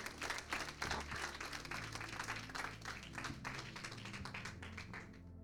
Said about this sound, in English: Hallelujah. Come on, give the Lord a hand clap this morning.